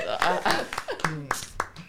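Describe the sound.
A few sharp, scattered claps ring out, loud and irregular, mixed with voices talking and chuckling over them; a short, thin round of applause rather than a full crowd.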